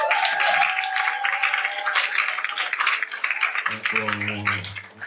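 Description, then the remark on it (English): A crowd claps steadily throughout, a dense patter of many hands, with voices calling out over it and one louder voice rising near the end. “I thank God for the life of the president who are clapping.”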